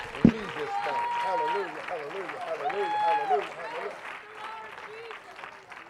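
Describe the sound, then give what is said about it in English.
An audience claps their hands in praise to the Lord in a dense, steady stream of claps, with voices calling and singing over it, after one sharp loud hit at the start. “Oh, I'll clap your hand to the Lord.”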